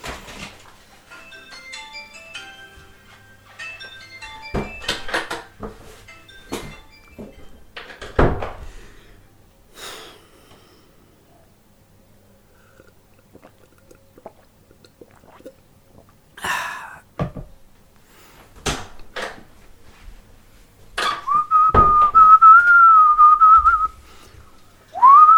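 A work mobile phone inside a bag rings with a short melodic tone pattern, followed by scattered knocks and thumps, then a loud, sustained wavering high tone near the end; no one speaks.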